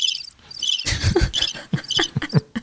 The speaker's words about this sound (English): Oh, give me a cricket. Okay. Give me a cricket.